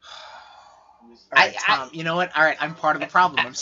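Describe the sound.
A mobile phone vibrates with a steady, low buzzing hum for about a second, then stops and people begin talking.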